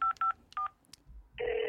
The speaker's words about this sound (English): I'm gonna call him right now. Let me dial that number. Dialing it now.